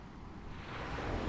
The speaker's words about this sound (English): It's ocean.